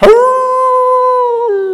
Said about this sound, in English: I was walking home. It was close to midnight. It was dark. And then out of nowhere, a dog begins to howl.